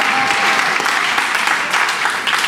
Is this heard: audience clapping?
yes